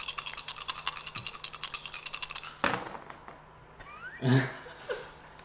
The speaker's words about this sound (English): Did you hear that? Is that rustling? I didn't know these leaves could rustle. Why did it get so windy all of a sudden?